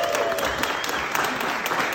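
audience applause

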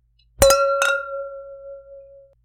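wine glasses clinking

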